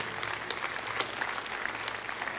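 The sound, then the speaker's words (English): A crowd claps steadily, a dense wash of many overlapping hand claps with no clear rhythm, sustained at an even, moderate loudness throughout. “Let's clap for them.”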